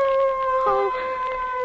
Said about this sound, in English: Oh. Those dogs.